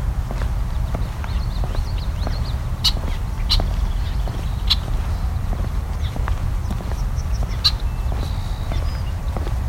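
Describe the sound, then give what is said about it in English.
A male red-winged blackbird gives a few sharp, clipped calls spaced irregularly over steady low outdoor rumble, with some faint higher notes in the background. “The red-winged blackbird, male.”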